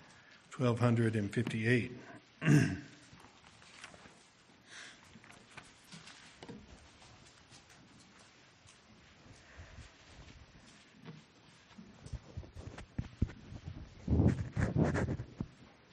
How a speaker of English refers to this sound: It's nice to hear the pages turning, isn't it?